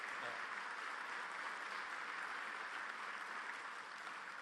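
Steady, dense applause from an audience for babies attending a speech fills the whole stretch, a loud crackling wash of many hands clapping without pause and holding at an even level throughout.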